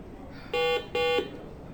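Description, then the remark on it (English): Two short electronic buzzes from a quiz buzzer during a quiz game, in quick succession, each a steady harmonic-rich tone lasting about a quarter second, over a faint murmur of background noise. “Did you buzz it?”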